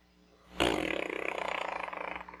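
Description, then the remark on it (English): A monster roar following an earthquake bursts in suddenly after a brief quiet moment, loud, with a rough, rapidly pulsing growl that holds for nearly two seconds before trailing off. No voices. “And then, another earthquake happens, followed by another roar.”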